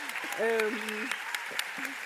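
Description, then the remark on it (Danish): An audience applauds with a steady, dense patter of clapping and a few sharper individual claps, while a voice speaks briefly over the applause. “Det er meget fedt det med at have et publikum, der bare klapper, når man siger noget.”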